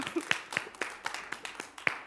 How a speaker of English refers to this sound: I'm glad for the spring weather, though. I really am. It took a long time for us to get to it, but we have it, right? You can clap for that.